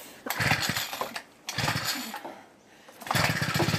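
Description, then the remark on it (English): A four-stroke petrol lawn mower engine being cranked to start, three loud sputtering bursts of rattling engine noise with short pauses between, with no talking. “Yeah, the one that has a 4-stroke engine. Don't have to mix the oil and the fuel.”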